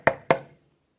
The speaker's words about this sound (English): King's grandson is living in somebody's house. And there's a knock on the door.